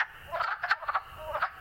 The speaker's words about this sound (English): Wood frogs are perhaps one of the very first frogs to call at that time of year, right after the ice melts on the ponds, and you get that first 55-degree day in late February.